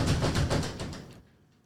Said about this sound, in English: I said knock on the door. It didn't say break the fucking thing.